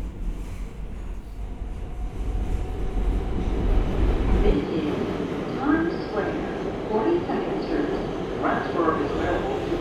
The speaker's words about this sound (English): We're on the right car to just jump off, run up the stairs, and out the station.